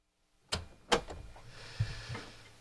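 A door opens and shuts with a couple of sharp clicks and knocks, followed by a low thud, close by. No one speaks, and a little faint rustling fills the gaps.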